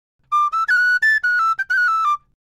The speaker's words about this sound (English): I've been playing the tin whistle for about 30 years. And I've grown up with it.